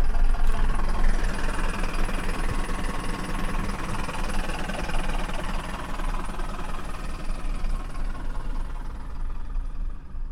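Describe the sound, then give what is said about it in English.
The diesel engine of an old bus, setting off on a tour to Slapton, rumbles steadily, a continuous low, rough throb with a faint knocking texture, holding even in loudness throughout with no voices. “Beautiful sound of the old diesel there.”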